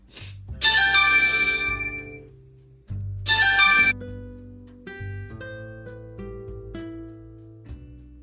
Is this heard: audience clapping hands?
no